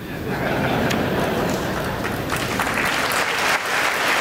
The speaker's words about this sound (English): As you can hear, the president got a chuckle as well as some applause from that.